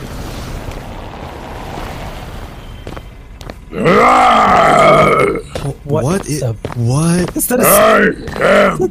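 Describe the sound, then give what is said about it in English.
Deep, guttural super mutant grunts and growls, loud and harmonic, in a series of rough bursts with short gaps, preceded by a few seconds of low rumbling noise. “That's a super mutant.”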